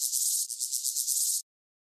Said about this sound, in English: Today's Name That Sound is a grasshopper.